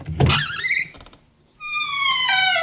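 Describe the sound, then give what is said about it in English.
A door opens with a low thump and a short scraping creak, a brief pause, then a long, steady, high-pitched squeal of the hinge that slowly sags in pitch. No one speaks. “Open the door.”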